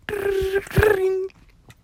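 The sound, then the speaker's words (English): An old 1980s-style telephone bell rings in a steady, sustained tone that pauses briefly halfway, then sounds again before cutting off, fairly loud, with faint background noise. “Don't even know what phone sound like that. That's that 80s ass bell ring.”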